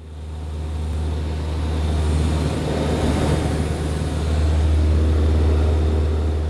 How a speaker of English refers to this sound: Ah, the sweet sounds of a Lycoming 180 horsepower engine. At 7,000 feet, somewhere between Atlanta and Electric City, I'm in the co-pilot seat, just watching, just mesmerized by this whole thing. Just above the cloud layer here at 7,000 feet.